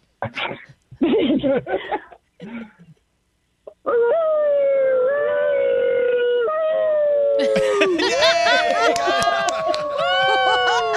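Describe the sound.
A person imitates a wolf howl: a few seconds of brief vocal bursts, then a long, loud, wavering howl with gliding pitch, joined by more layered howling voices near the end.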